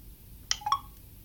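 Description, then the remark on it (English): A smartphone unlocks with its fingerprint sensor as a middle left finger is placed on it after the home button is pressed once, giving a quick pair of crisp electronic beeps, standing out alone over a faint low background hum. “So I'm back to settings and I know it worked because it just unlocked my phone.”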